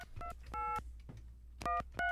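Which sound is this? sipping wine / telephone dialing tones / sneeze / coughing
telephone dialing tones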